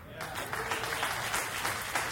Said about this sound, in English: It's an extra blessing for you who started the clap over there.